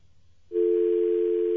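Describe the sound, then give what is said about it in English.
After a brief low rumble, a steady telephone tone switches on abruptly and drones loudly and unbroken to the end, with no speech. “Oh, I thought it was just a handicapped person that died on the phone.”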